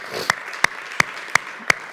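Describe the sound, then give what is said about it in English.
A church audience claps in unison for Jesus, five sharp, loud claps landing in a steady, even beat over a soft wash of scattered clapping and crowd noise. “And if you believe that, can you put your hands together and clap to Him one more time?”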